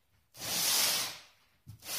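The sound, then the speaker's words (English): An incense burner is pulled closer across a surface, making a long, breathy scraping swish followed by a shorter second scrape starting sharply. No one talks. “that's the sound of me pulling the incense closer and then turning it off.”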